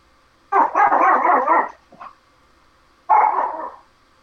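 puppy barking

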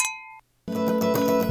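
glasses clinking

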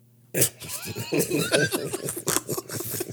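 sheep bleating

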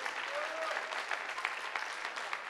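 audience applauding

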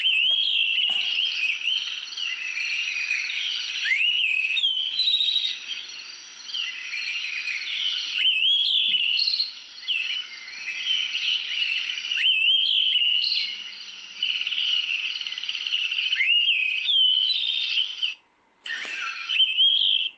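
thrush call

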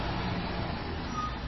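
garbage truck passing outside

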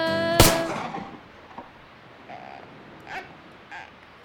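gunshot

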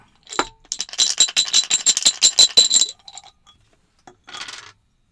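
four dice being rolled

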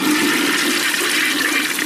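toilet flushing

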